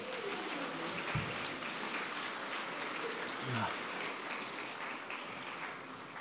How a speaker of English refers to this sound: a round of applause, would we?